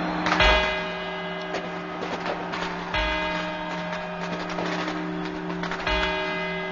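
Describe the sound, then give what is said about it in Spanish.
A clock tower's bells in Madrid chime the four quarters before the twelve New Year's Eve strokes at the end of 1989, ringing out in a slow series of resonant strikes whose tones hang and overlap between blows. The sound is loud and carries with no voices. “Estos son los cuatro cuartos.”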